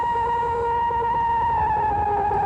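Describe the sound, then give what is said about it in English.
A man's voice imitates the scream of a large creature, a loud, sustained high wail with rich harmonics held steadily for a couple of seconds, with no other sounds. “I'm going to yell out one of those crazy screams that he's got that gives me chills every time I hear it.”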